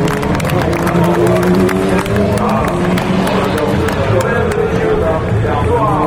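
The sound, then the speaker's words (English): A large crowd claps and cheers steadily at the finish of a motor race, a dense continuous roar of applause with overlapping voices, loud throughout. “Listen to the applause.”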